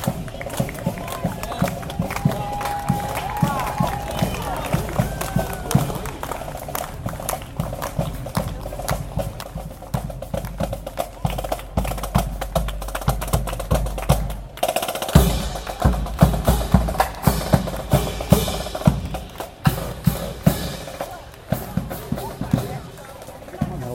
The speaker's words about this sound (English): We got the marching band. So I'll stop talking, let you listen as I pass by them.